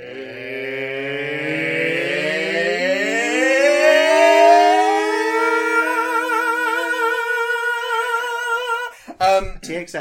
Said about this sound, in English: THX presentation. Only dogs can hear it.